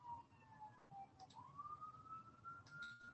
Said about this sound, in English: I hear sirens. You know what's behind me? That's not me. That's not me.